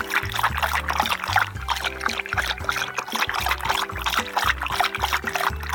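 Water is poured steadily into a glass, a continuous trickling splash lasting several seconds, with no one speaking over it.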